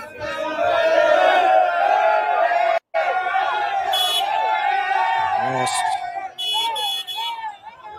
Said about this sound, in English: Huge crowds of protesters in London, England.